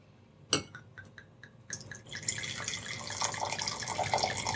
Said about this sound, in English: So, let me pour this up.